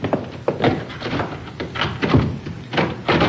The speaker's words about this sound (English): I'll lock the door.